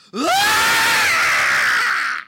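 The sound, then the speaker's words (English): A single loud, sustained high-pitched scream imitated by an adult voice, an impression of a six-year-old girl's guttural scream, rising sharply at the start and held for about two seconds before cutting off. “I simply cannot make the guttural, high-pitched scream a six-year-old girl makes when she's experiencing the worst moments in her entire short life.”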